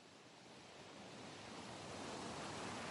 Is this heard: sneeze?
no